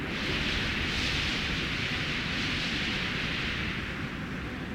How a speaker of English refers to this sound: Behold the intense hissing sound made by the gusting wind passing over and through the cactus's countless clusters of stiff, sharp spines. My goodness, this is truly an unbelievable soundscape. Sounds like something sizzling in a frying pan.